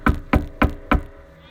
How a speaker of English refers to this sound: They get to this house. This is a beam of light. And they knock on the door.